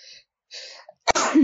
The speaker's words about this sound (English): Excuse me. Bless you. I don't know if I've ever sneezed on a podcast or anything.